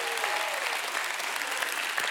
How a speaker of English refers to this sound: Have you found life Give God a hand clap and a shout of praise this morning.